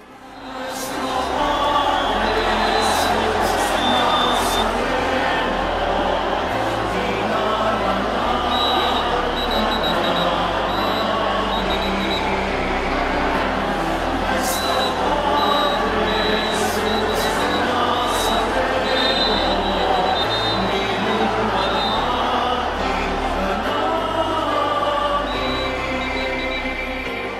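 Hundreds of voices sing a slow melody together under a bright sun, a dense, steady wash of sound that fills the space, with a few sharp claps or clicks breaking through now and then.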